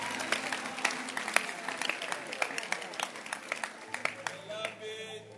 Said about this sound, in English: Can you clap your hands? You see how they are clapping their hands? That's the church.